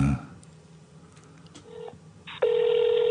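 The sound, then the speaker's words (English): An international telephone ringing tone on a call to a phone abroad: a short electronic beep, a brief pause, then a loud, steady buzzing tone that starts and holds right to the end, heard through a phone line. “That's an abroad phone.”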